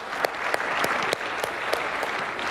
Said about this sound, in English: Okay, big round of applause for the people with their hands still up.